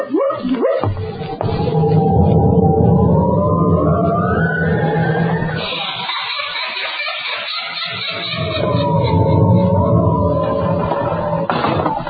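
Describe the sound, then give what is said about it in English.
A door in a haunted house creaks open with a long, groaning whine that slides up and down in pitch, pauses, creaks again, and ends with an abrupt slam. No one speaks. “That door again. Insidious feeling doors opening and slamming.”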